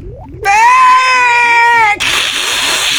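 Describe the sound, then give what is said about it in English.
A light bulb screaming after its light switch is clicked on: one loud, shrill, sustained wail lasting about a second and a half, cutting off abruptly into a rough, noisy hiss. “have you heard a light bulb screaming?”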